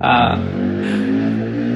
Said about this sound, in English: There you go. There's another motorcycle.